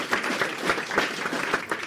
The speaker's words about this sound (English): Round of applause.